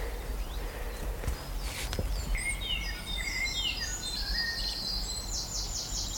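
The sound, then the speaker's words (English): Woodland songbirds, including chiffchaffs, blackcaps, robins and dunnocks, sing in overlapping, warbling phrases from about two seconds on, clear, over a steady low outdoor rumble with a couple of sharp knocks early on. “All the birds just coming in, flying around me. Chiff chaff, black cap, robins, dunnocks.”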